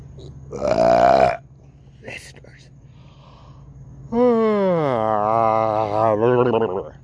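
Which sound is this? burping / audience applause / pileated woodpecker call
burping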